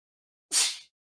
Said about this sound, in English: Bless you. Oh, it's a little sneeze. Thank you.